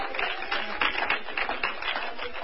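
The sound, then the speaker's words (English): An audience claps for a couple of seconds, many hands producing a dense, steady patter of applause at a fairly even level, with no voices over it. “You know, some of you clap here.”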